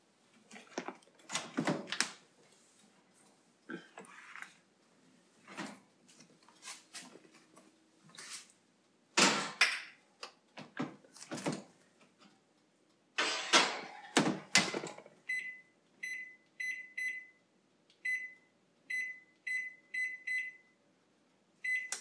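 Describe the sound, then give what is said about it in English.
Clattering and clunking as metal pans of donut batter and a small ramekin holding a little muffin of leftover donut dough slide into an oven, a heavy door thuds shut, then a run of short electronic beeps from the oven controls. “That's what you heard going in the oven in a ramekin because I wasn't wasting the dough.”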